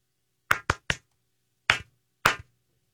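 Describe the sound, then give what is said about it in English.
Five sharp hand claps applauding the Netflix show Wednesday, with no talking: three in a quick burst, a short pause, then two more spaced slowly apart. Each clap is crisp and bright, with a brief ring after it. “Could you clap now?”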